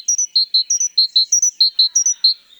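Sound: great tit song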